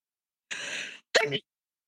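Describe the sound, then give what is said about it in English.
A single sneeze: a half-second breathy, hissing intake followed by a sharp, voiced burst, then silence. No one is talking. “Bless you.”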